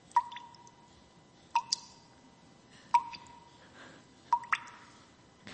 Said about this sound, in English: That steady drip.